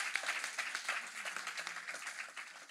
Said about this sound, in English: Can we clap to that? Hey? Hey?